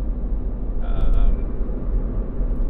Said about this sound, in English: Driving home looks like it might take more than 15 minutes. A lot of traffic going the other way